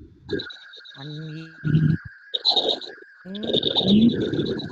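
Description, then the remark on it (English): Warbling, chirpy digital glitch noises from a choppy internet call, with a steady thin whine running through and bursts of garbled tones starting and stopping, fairly loud, with no clear speech. “Okay, still chirping a little there.”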